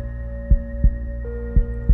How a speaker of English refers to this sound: He could hear his heart pounding in his chest.